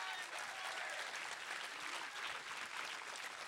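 A crowd claps steadily in a dense, sustained round of applause thanking AMC, many hands blending into a continuous bright patter that holds at an even level throughout.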